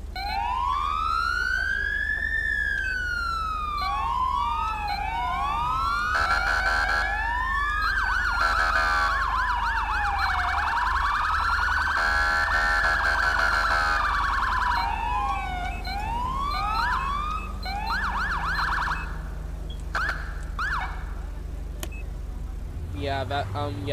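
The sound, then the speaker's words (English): A police siren like the one used by the Carolina state highway patrol wails loudly, sweeping up and down in long arcs, then switching to faster yelping cycles, with harmonics layered above and a steady engine rumble beneath. “So let me give you a demo of the siren that I use, because it sounds just like the state highway patrol here.”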